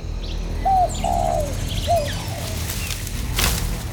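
A pigeon on a low branch in damp early morning woods coos three times in short, soft phrases while small birds chirp faintly, over a low, steady outdoor hum, with a brief rustle or flutter near the end.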